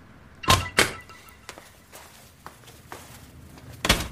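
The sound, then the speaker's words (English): The heavy door of a security office in a building's basement being unlocked and opened: two solid thunks, a scattering of small metallic clicks, then a final loud clunk, with no voices. “Can you open the door, please?”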